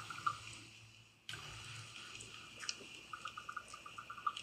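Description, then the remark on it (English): A raven gives a series of quick, dry clicking calls, the short knocks coming in an uneven run over a steady background hiss, with no voices. “have you ever heard like a clicking noise like from a bird?”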